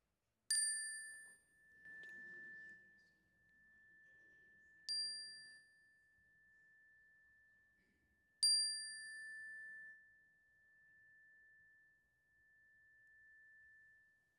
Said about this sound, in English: At the sound of the chime, I invite you to say aloud the names of anyone who could use prayers and love today.